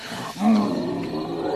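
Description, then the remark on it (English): A lion lets out a single deep, loud roar that swells quickly and trails off into a rumbling growl, powerful, with no voices present. “He threw his head back, showing his sharp teeth, and roared very loudly. Then he roared again.”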